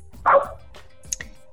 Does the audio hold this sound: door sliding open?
no